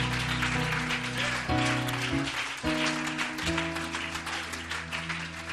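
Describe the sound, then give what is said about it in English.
An audience claps steadily for several seconds, giving Jesus a hand clap of praise at a morning service, a dense, continuous patter of many hands, while sustained organ chords shift underneath. “Give Jesus a hand clap of praise here this morning.”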